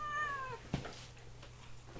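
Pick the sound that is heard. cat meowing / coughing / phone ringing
cat meowing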